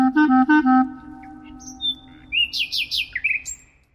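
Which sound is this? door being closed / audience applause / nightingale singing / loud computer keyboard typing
nightingale singing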